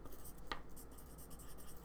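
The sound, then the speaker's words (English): Soft scratching of a pencil moving across paper in short repeated strokes as a person writes notes down, with a small tap early on, fairly quiet and with no talking. “I'm going to take this paper with me and write this stuff down.”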